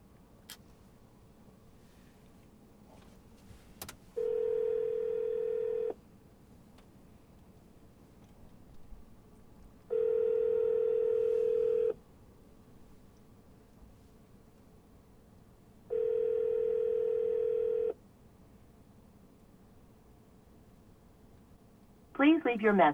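A phone ringback tone on an outgoing call: three steady, clear two-second rings spaced evenly several seconds apart, with faint background noise in between.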